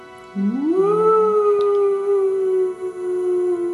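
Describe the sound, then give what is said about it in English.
A single long, ghostly howling wail from a human voice, sliding up in pitch and then holding a steady, wavering tone for about three seconds before trailing off. “It would be slow, and I would even scream like this.”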